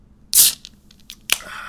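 A beer is opened: a loud, bright hiss of escaping gas lasting a quarter second, then a sharp click followed by a fainter fizzing hiss. No one speaks.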